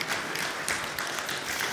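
A crowd applauds with dense, steady clapping that holds an even loudness for a couple of seconds, with no voices over it.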